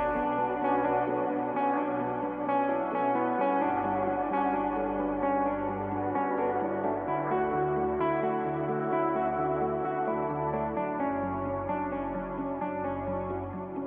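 A polished pop song plays steadily, with a thumping bass line, bright layered harmonies and echo-drenched effects filling the mix at an even, full loudness throughout.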